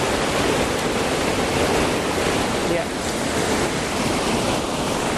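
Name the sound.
rushing stream water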